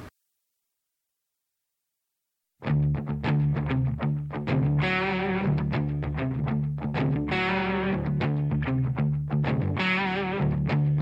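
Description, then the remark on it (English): After about two and a half seconds of silence, a loud modern rock track kicks in with a dense, distorted band sound, steady driving rhythm and sustained chords, with no talking over it. “Doesn't tell me much about it other than listed as modern rock.”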